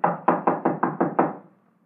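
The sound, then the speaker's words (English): Seven quick, evenly spaced knocks rap on a locked wooden door of a room, fairly loud with a solid low thud to each, then silence follows. “The door's locked, all right. Well, let's try knocking.”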